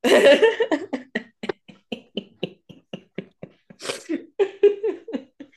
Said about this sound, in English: Oh, coming over a cold. Excuse the sniffles.